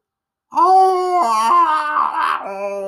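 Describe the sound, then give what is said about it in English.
A voice imitates a monstrous howl from the throat of a monstrous figure: a loud, sustained wail that steps up and down in pitch, roughening into a raspy growl near the end before settling into a steady tone. “A strange howling noise came from the throat of this monstrous figure.”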